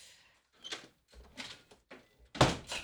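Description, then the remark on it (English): A back door of a home being opened with a home alarm chime, a series of rattling, clattering bursts and a louder knock near the end, with no one talking. “Oh no, you heard the alarm, lady. Go back door. No, it's closed.”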